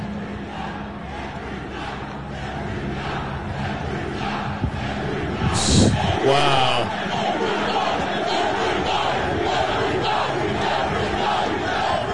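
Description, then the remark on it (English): A large protest crowd roars and shouts a chant together in a steady, dense wash of voices. A brief, sharp burst of noise cuts through midway, and a single voice exclaims over the din. “I know that they were shouting earlier. It's been the chant, lest we forget.”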